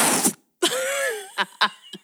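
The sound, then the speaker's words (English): A voice reenacts a rude fart heard on waking from a nap: a short breathy hiss, then a sustained buzzing, sputtering tone that wavers in pitch for about a second, followed by three quick popping bursts. “And I woke up to the rudest fart I've ever heard in my life. How was it? Can you, like, reenact it?”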